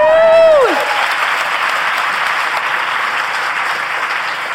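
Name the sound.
audience applauding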